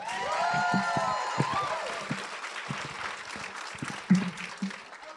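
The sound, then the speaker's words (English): An audience breaks into steady applause with scattered whistles and cheers, showing who has seen the show Letterkenny, loudest at the start before thinning into lighter, uneven clapping with a few sharp claps near the end. “Really quickly, by sort of sound of applause, who's seen Letterkenny before?”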